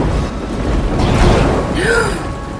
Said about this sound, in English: He was just struck by lightning. Holy shit, he's smoking.